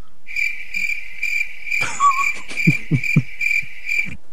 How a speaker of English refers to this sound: Crickets. And more crickets.